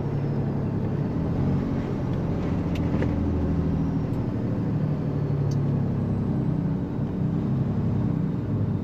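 A steady, heavy engine rumble drones from inside a moving truck cab, low and continuous with faint road noise and occasional light clicks, no one speaking.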